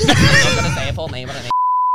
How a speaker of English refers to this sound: bleep the name out.